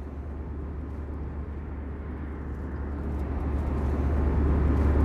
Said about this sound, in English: Okay, we're on an airplane flying from Toronto to New York.